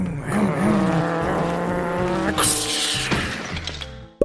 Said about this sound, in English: Alright, let's race our cars into each other.